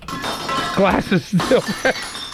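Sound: glass breaking sound effect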